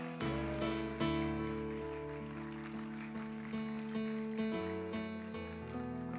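A crowd applauds steadily for about six seconds, a dense, even patter of clapping over sustained low musical tones, with no speech.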